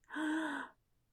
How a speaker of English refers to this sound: Little Bird woke up to the sound of all of her friends gasping in shock